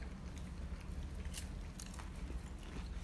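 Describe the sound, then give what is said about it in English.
Crunching of fried chicken on the bone being bitten and chewed, with a few sharp crackly bursts over a steady low rumble and no one talking. “This is actually the most crunchiest.”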